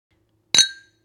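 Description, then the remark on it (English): A single bright clink of sherry glasses touching in a Happy Pride toast, clear, with a short ringing tone that fades within a fraction of a second against silence. “Now, we have to cheers ourselves.”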